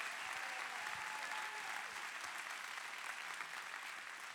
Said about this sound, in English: You better clap your hands and shout. Let's go. Come on, clap.